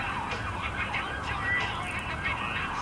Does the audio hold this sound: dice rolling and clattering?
no